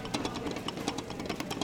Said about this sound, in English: A big industrial mixer does the kneading job.